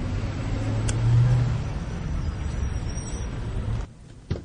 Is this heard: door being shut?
no